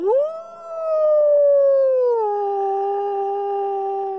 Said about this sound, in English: But you know what is music to the ears of even a stubborn old raven? The howl of a wolf.